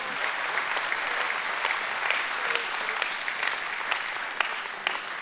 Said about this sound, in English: If you receive this today, give the Lord a hand clap and say, yeah.